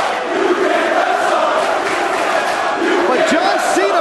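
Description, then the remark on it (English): A large wrestling arena crowd of ECW fans chants "Cena, you can't wrestle" at John Cena loudly in unison, a dense roar of many voices with rhythmic rising and falling syllables and a few sharper shouts standing out near the end. “Crowd Cena, you can't wrestle.”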